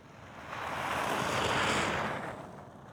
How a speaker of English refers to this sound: Every sound tells you a story. A car passing by on a snowy route.